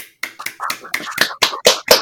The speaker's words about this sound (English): Is it okay that I'm clapping? Yeah. Yes, please.